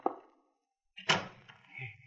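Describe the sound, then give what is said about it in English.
A back door opens and shuts, with a short knock-like thump, a brief pause, then a louder, resonant bang that rings out over a low rumble. Fairly loud, no voices. “He went out the back door.”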